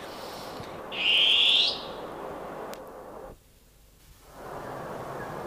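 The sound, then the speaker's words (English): A single loud, shrill long-tailed cuckoo call, a rising screech lasting under a second, cuts through steady background hiss and then stops. “Oh, beautiful long-tailed cuckoo.”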